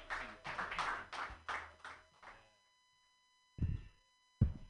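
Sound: audience clapping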